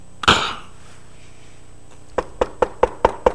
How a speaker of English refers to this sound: The door's being shut.